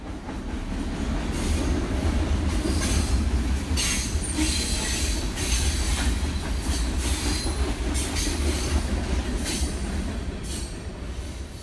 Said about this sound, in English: You've been listening to A Train Over the Beeline in Bloomington, Indiana.